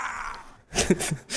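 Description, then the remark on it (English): A steady wash of crowd noise at a political rally drops out briefly, then Howard Dean lets loose his famous loud, raspy, strained scream in short bursts, rising sharply in pitch as the crowd roars back. “Oh, Howard Dean scream, of course.”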